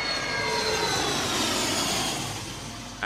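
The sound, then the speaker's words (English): A steady, broad engine roar from an airplane passing overhead, coming from the direction of Gatwick, loud and continuous for the whole stretch, with a faint high whine riding on top and no voices. “That's a damn plane.”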